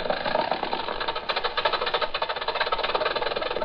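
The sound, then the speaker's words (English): An old-fashioned car engine, from a car that was once the newest on the road, chugs steadily, its rapid, even knocking pulses rattling on without pause at a moderate, consistent loudness, with no talking over it. “Once upon a time, this was the newest car on the road.”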